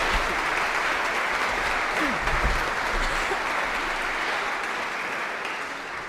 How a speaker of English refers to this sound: And many thanks also for the composer for being here today. Receive our applause.